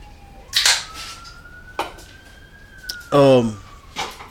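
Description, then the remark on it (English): Emergency vehicle sirens wail steadily outside, the tone slowly rising, while a few sharp knocks and a short burst of voice break in. “I don't know what's going on with the sirens.”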